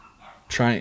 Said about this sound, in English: The dog. Is Michael Vick down there in your living room?